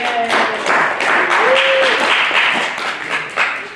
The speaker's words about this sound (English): So applaud yourselves for making it.